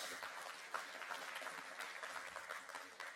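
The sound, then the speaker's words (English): A church audience claps steadily for a few seconds after a hand-drawn video made by a church member, a dense, even patter of many hands with no voices rising above it. “That was a pretty cool, yeah, you can give that a clap.”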